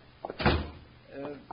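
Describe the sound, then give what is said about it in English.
A door is swung shut by Jingles with a single solid thud, fairly loud, followed by a brief snippet of a man's voice. “Close the door, Jingles.”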